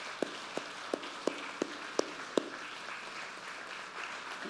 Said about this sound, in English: Okay. Yeah, let's give a round of applause for these.